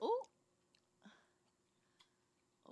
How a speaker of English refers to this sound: Yeah, I'm chewing my sausage.